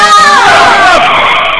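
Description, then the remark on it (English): A car driven by a woman skids as someone jumps in front of it, with a loud, high-pitched tire screech that wavers and slides slightly downward in pitch, holding steady for over a second without a break. “I'm jumping in front of the car this time! No! She'll hit you!”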